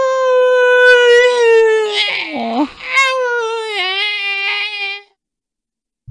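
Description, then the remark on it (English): A voice imitates the horrible, hissing, haunting singing noise of a writhing thing sinking into a pool: a loud, sustained, wavering howl-like tone that dips in pitch and turns breathy midway, lasting about five seconds before falling silent. “And as it goes, it makes kind of like this horrible, hissing, haunting, singing noise as it goes”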